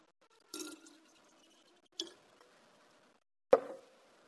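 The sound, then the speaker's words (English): Dirty water is poured into a container of clean water, splashing in three separate, short plops spaced about a second and a half apart, each with a brief ringing tail. Fairly loud, no talking. “But we like the crappy water too. And so we decide, you know, I'm going to add that.”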